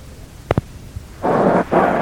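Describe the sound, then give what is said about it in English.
Two quick sharp pops, then heavy rain at Yankee Stadium during a Yankees vs Kansas City baseball game, as the ground crew is told to put the tarpaulin on: a loud, dense hiss that swells up, drops out briefly, and surges back just as strong. No voices. “It is really coming down now.”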